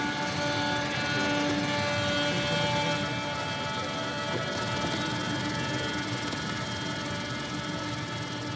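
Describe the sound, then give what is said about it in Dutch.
Helicopter rotors thrum in a loud, continuous roar throughout, with steady sustained string tones layered above the rumble, from a performance of a helicopter string quartet; no voices are heard. “heb je het helikopterstrijkkwartet van Stockhausen ook gezien, gehoord”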